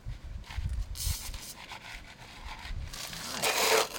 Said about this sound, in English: And now you sift the topsoil over it. Yeah, put the icing back on the cake.